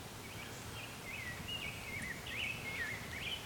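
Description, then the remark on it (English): A Nashville warbler sings a thin, high series of quick chirping notes, fairly faint, over a steady low outdoor rustle with no one talking. “A Nashville warbler here.”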